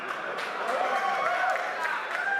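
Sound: audience cheering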